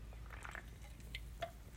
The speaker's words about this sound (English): Excuse me, I have to take a drink of water.